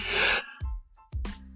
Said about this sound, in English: Excuse me, sorry, still yawning.